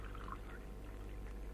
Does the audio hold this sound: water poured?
yes